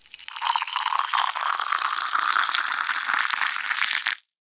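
A steady stream of coffee pours into a cup for about four seconds, an even splashing hiss that stops abruptly, with no one talking.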